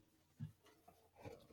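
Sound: coughing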